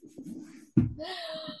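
A person yawns: a soft breathy intake, then a sudden open-mouthed gasp that stretches into a drawn-out, wavering vocal groan before trailing off, with no other talking.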